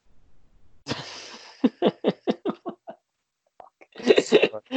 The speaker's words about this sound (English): Bless you.